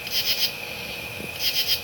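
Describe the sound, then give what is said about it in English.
A katydid's mating call, made by rubbing its front pair of wings together: two raspy, high-pitched bursts of about three quick scratchy pulses each, separated by a pause, over a steady thin whine and faint background hiss. “Katydids make this sound by rubbing their front pair of wings together.”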